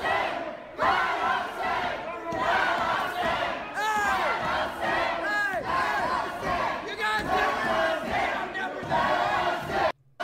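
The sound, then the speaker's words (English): A large crowd of protesters, Trump supporters carrying guns inside a public building, shouts and screams together to see the governor in a sustained, chaotic roar, with individual voices rising and bending in pitch above the din, loud throughout before cutting off abruptly at the end. “You can literally go into public buildings with guns and scream to see the governor.”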